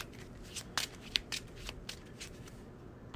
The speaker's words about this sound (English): What I'm going to have to do is shuffle the encounter discard pile into the encounter deck.